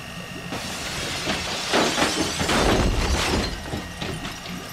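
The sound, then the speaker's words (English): An atomic beam crackles and roars as it disintegrates a steel ball: a harsh, hissing burst swells for a couple of seconds over a steady background hum, with no voices. “Then, is it blown into atomic dust?”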